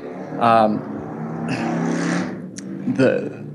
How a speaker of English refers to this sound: Did you hear the motorcycle? No worries.